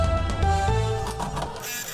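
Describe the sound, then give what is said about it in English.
An old printer runs with a steady mechanical whir and droning hum, its pitch shifting a couple of times as the mechanism grinds along. No voices. “Fucking printer is ancient. It works, and that's what counts.”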